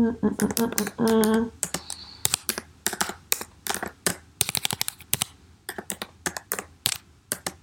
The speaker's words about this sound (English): Sorry, my nails are super, like, claw-like right now, so I have a hard time typing sometimes.